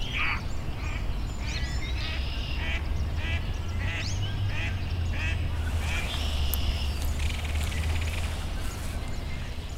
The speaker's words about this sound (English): We heard a mallard duck simply quacking away.